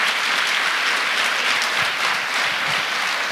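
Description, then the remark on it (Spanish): An audience applauds the Lord steadily, a dense, even wash of many hands clapping at a constant loud level, with a brief voice starting just at the very end. “Si alguien lo crea, dale aplauso al Señor.”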